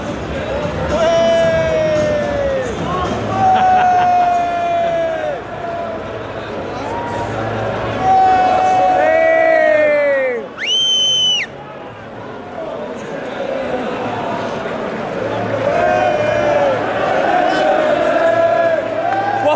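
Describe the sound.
A large football crowd leaving the stadium after a match mills about in a steady roar of overlapping voices, with music and sung notes rising above the babble and a brief high whistle-like burst midway through.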